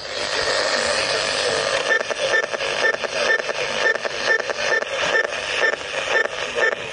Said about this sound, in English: every time we press a button on the remote control, it makes this awful noise on the radio